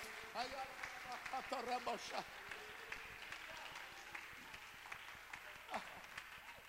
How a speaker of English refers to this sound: Could you clap your hands unto the Lord, somebody?